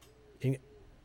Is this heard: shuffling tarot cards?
no